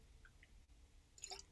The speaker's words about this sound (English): I have to take a drink of water, hold on.